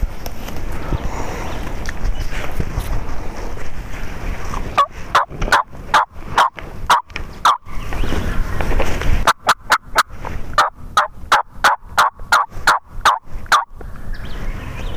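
Wild turkeys gobble outdoors during a turkey hunt, in two long runs of sharp, rapid rattling notes, loud over a quiet natural background, with no talking.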